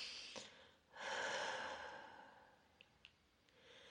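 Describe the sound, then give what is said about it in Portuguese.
A slow, deep breath drawn in and let out during a guided breathing exercise, without holding the air, a soft airy rush that swells and then fades away, quiet, with a few faint clicks near the end. “Não segura o ar e não expulsa, mas inspira e expira profundamente.”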